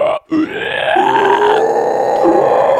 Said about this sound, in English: Ooh, I had to take a nice deep breath. I wasn't that. Sure if that was a breath or like a really bad inhale scream. A little bit of both.